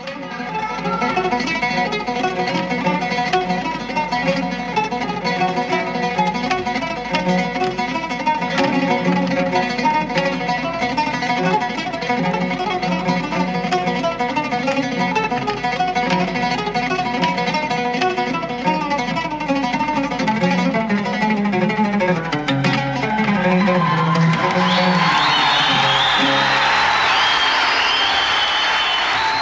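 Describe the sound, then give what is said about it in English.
A live oud performance by a musician with rapid plucked melodic lines and crystal-clear shimmering tremolo runs, building to a final flourish before loud, sustained applause from an audience takes over for the last few seconds. “So beautiful playing, great technical abilities, and the most important thing is his right hand.”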